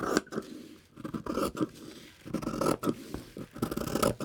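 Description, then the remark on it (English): Fabric scissors snip and crunch through cloth in a steady series of scratchy cuts, each stroke a short rasping burst with brief pauses between. “I love the sound of cutting fabric.”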